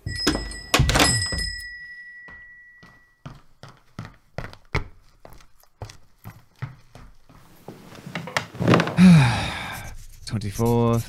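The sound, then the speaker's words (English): A door shuts with a solid thunk and a brief ringing jingle, followed by a run of sharp, evenly spaced taps and some breathy noise at the end. “Close the door.”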